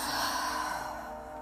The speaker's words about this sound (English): a forceful breath, breathing in through the nose and out through the mouth, forcefully just getting everything out.